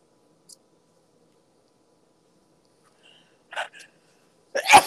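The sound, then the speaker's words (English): After a long quiet stretch, a couple of short catching breaths build up, then one loud, explosive sneeze bursts out at the very end. “Oh, you really were going to sneeze.”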